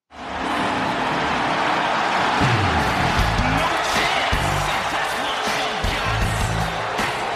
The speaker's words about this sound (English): You can hear people booing.